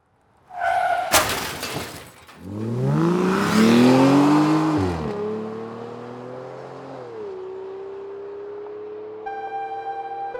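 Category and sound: vehicle, car crash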